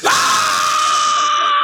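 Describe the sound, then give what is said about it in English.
A single loud, sustained human scream, piercing, holding steady for over a second with no other sounds around it. “Scream something.”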